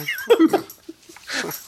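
Excited dogs whine and yip as they greet a woman arriving home, a quick cluster of high, eager sounds, then another breathy whimpering burst a moment later, with no talking.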